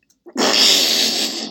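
A single loud sneeze: a brief catch of breath, then a long, hissing, breathy burst of air that trails off after about a second, with no talking.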